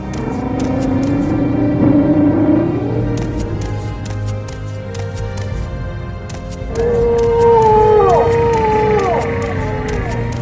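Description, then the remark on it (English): A silt strider, a gigantic bug in an Elder Scrolls game that ferries travellers from the docks of towns, calls: deep, moaning roars that slide up and down like whale song, rising in two long swells over a steady low rumble, loud. “So that mixture of Chewbacca roars and whale song is coming from a silt strider, which is a gigantic bug that they just sort of hang out by the docks in certain towns, and then they'll just like ferry you to other places.”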